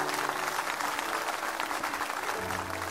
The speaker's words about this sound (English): Give these people a great big clap offering, would you please?